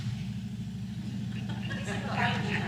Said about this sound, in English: Timing. Lots of motorcycles. Timing.